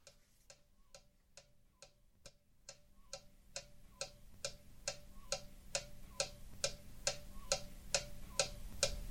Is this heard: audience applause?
no